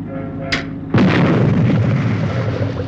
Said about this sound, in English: It's a bit difficult to explain, but that was a shot of supercar firing its engines. There was a fish tank in front of the screen, and in there was a piece of coral or seaweed.